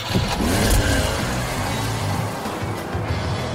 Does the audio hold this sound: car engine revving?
yes